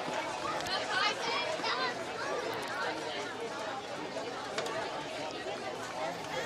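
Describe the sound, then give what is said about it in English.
A steady wash of crowd chatter from a pretty good crowd at a ballpark during a night baseball game, many overlapping voices blending into a continuous murmur at an even level throughout, with no single voice standing out. “We've got a pretty good crowd here tonight.”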